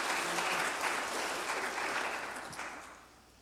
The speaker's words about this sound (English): If you love God and his word, give him a hand clap today. Amen.